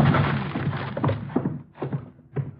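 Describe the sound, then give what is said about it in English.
Men ram their shoulders against a spring-locked door on a count: a burst of scuffling noise, then four heavy, dull thuds at uneven intervals, each a low booming knock that rattles briefly. “Come on, Doc, let's put our shoulders to it.”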